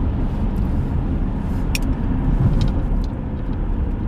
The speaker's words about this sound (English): And like I said, look, what is going on with this traffic today?